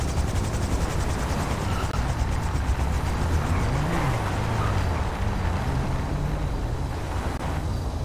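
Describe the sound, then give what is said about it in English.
A helicopter in a video game drones steadily and loudly throughout, its rotor chopping in a fast, even pulse over a rumbling engine roar and windy noise, with no one speaking. “Oh, actually, I hear a helicopter.”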